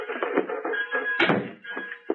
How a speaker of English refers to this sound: Close the door